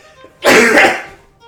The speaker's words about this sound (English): The frog knight sneezes. It sneezed right out of you. All the magic. Whew. That was a hefty sneeze.